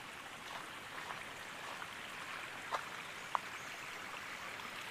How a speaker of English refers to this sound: Sounds like there's a lot of water running somewhere. That's odd. That's different. Oh yeah, it's right here.